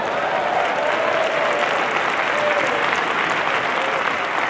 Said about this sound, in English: Let's just go ahead and clap our hands and give God praise for that.